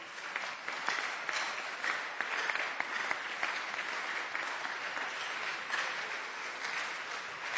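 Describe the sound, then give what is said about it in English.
A church audience, standing, claps their hands for the Lord in sustained, dense applause, many overlapping claps at a steady level throughout, with no talking over it. “Stand to your feet and clap your hands for the Lord.”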